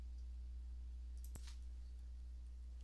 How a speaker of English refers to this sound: I just want to walk you through the ordering process. So I'm clicking order now.